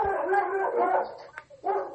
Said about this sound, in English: Sorry about that. There's a big dog out there that has to be Roman Reigns. You better go get that door.